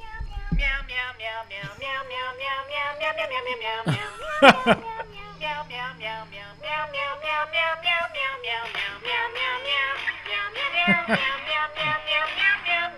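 A steady run of rhythmic, tuneful meows repeats for several seconds, like a cat meowing along to a bouncy melody, loud with a brief burst of noise partway through, played for the sponsor Meow Mix.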